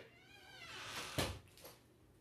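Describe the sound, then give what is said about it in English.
A cat lets out a single drawn-out meow, followed by the sharp click and thud of a door opening as the cat is let out, with a softer bump after it. It's quiet, with no one talking. “Sorry, I had to let my cat out.”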